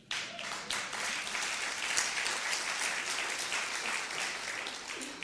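An audience applauds steadily for about five seconds, a dense, crackling wash of many hands clapping at once, loud and sustained throughout with no voices standing out.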